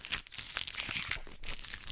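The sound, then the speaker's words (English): Continuous crinkling and crackling of a paper wrapper being twisted and rolled off a drink, dense rustling bursts over two seconds with a brief lull partway through, no voices. “I just rolled my paper off.”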